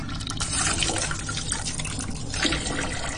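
Water runs steadily from a tap into a big cooking pan, filled for boiling pasta, a continuous splashing gurgle that holds fairly loud throughout, with no talking over it.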